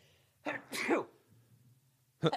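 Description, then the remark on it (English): A sharp sneeze with a quick intake of breath before it, set against a low steady hum, followed by a brief burst of sound at the end. “I'm gonna sneeze.”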